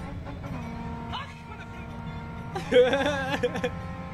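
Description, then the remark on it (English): A G-Wagon's engine hums steadily, then suddenly revs hard, its pitch climbing and wavering through a loud burst as the gears shift down to fifth, before easing back to a steadier drone. “Maxing out the drivetrain of that vehicle.”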